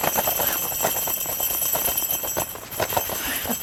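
Little tiny Christmas bells from an unboxing of the Wisdom experience jingle steadily in a quick, bright, irregular shimmer, with high ringing tones sustained throughout and no voices.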